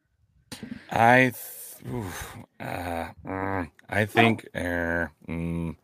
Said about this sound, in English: Count the barks. I'm going to say 0-1. I think Brew thinks there's going to be 3 goals. I heard 3 barks there.